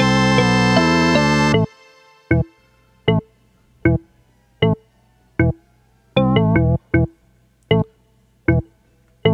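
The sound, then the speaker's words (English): A synthesizer preset tone sweeping down and up at once, first as a sustained wavering note, then as a run of short, bright struck notes in an uneven rhythm, loud with no talking. “But you hear how it has the down sweep and the up sweep at the same time?”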